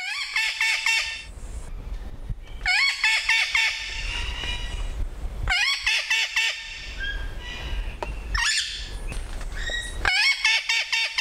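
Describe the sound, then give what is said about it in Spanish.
Captive Puerto Rican parrots at Río Abajo give loud, harsh squawking calls in repeated bursts, each a cluster of raspy, high-pitched notes separated by short pauses, over a steady low rumbling background. “Río abajo, cotorras en cautiverio.”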